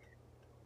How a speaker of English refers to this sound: Bless you.